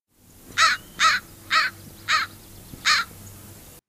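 An American crow gives five harsh, evenly spaced caws, loud, with a faint low hum in the background and no voices.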